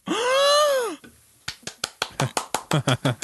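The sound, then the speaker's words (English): A drawn-out, wavering vocal groan fades out, then about a dozen sharp hand claps follow in a quick, steady run, growing slightly faster and fuller toward the end; the clapping is done to keep a fairy alive. “I kept it alive by clapping.”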